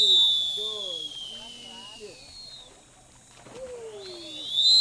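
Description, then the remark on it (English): A lifeguard's whistle break signal at an Austin city pool, telling everyone to get out of the water: a loud, shrill tone that slowly glides downward, a stretch of warbling, trilling lower notes, then the piercing whistle rises again at the end. “Why Do Lifeguards At Austin’s City Pools Blow Their Whistles At Break Time”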